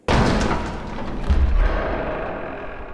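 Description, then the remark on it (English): A large set of heavy metal double doors at Void Networks swings open with a loud, abrupt clank, followed by a deep grinding rumble and a couple of low thuds that fade into a reverberant echo. “She finally stopped us in front of a large set of metal double doors.”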